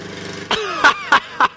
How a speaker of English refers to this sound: All he wanted was to use his magic powers to make his daughter turn off her lawnmower right outside your window right now while you're doing a live show. Oh, I love that my daughter's doing the lawn. Here it comes.